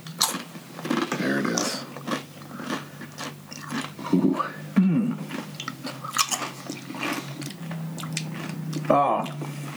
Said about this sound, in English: You want to try one just on a corn chip? Yes. Get more of a... Do you want to do that? Yeah. Our listeners want to hear you chewing a crispy corn chip. I know they do.